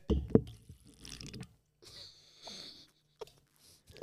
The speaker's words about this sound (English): That's what it sounds like when you sip.